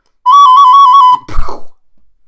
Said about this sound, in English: That's the bird exploding.